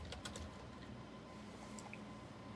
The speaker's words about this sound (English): Are you looking for them right now? I hear you typing,